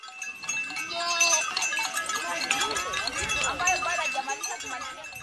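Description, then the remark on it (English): A herd of goats bleats repeatedly in overlapping calls, fairly loud, with shuffling movement and a tinkling bell as they pass by a school lesson where Maasai women sit under a tree, while voices talk in the background. “A herd of goats is passing by while … and her assistant … are conducting a school lesson.”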